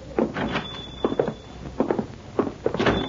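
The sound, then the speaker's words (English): A door slides open as people are invited in, then footsteps shuffle inside in an uneven rhythm of soft thuds, moderately loud, with a faint high whine running briefly underneath. “Maybe better we leave the door open so Pancho can get out of here in the hurry if the Senora go for the shotgun again.”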